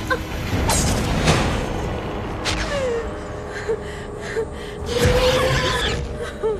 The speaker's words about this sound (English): Was that a pig noise? Yes. Pig squeals were used for a lot of, like, screaming effects and creepy stuff.